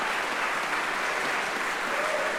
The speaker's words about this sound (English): Hold for applause.